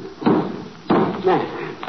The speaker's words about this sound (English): Now I take this hammer. Mm-hmm. Now I see it says, take the hammer and pound the watch out flat. There.